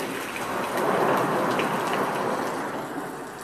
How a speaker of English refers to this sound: But listen, they even got thunder and lightning. Listen to this.